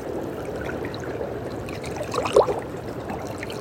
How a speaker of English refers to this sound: Just feel into the sounds of the water right now. And feel or imagine with every little wave coming in here. The lapping of the water.